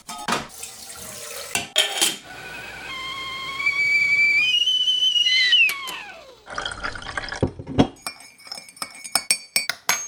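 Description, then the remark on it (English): A kettle's whistle rises steadily in pitch over bubbling water for several seconds, then slides down and cuts off, followed by a run of bright cups clinking together. “Let's put the kettle on.”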